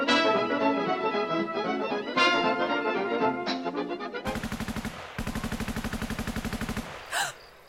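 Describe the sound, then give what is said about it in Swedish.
A droning, wavering tone gives way to two long, loud volleys of rapid automatic gunfire, crackling, fired by Norwegians straight into a car in a resistance action, separated by a brief pause, ending with a single sharp burst. “De sköt rätt in i bilen!”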